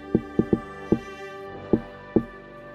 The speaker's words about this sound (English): Now I do the special knock. How does the special knock go? You know.